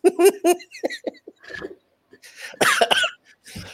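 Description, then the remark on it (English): A burst of coughing: several sharp, harsh coughs in quick succession, then a few softer hacks and a throat clear, growing loud and rough again toward the end. “Oh no, the coughing has started.”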